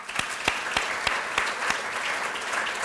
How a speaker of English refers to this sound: So I think all of you for spending that time owe yourselves a big round of applause as well.